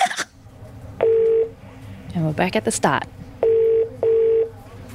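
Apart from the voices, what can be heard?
telephone keypad dialing tones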